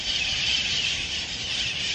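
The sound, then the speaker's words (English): A flock of wild parrots in a park at the top of a hill squawks in a dense, continuous chorus of shrill, high-pitched calls that stays loud and steady throughout, with no talking. “Thank you, wild parrots.”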